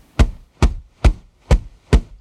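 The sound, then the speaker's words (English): Five evenly spaced, loud whooshing beats from a larger feather duster swung to imitate a large bird's wingbeats, each a short full-bodied flap with a steady, unhurried rhythm and no talking. “Whereas a larger bird, and now I'm taking a larger feather duster, is going to be more like this.”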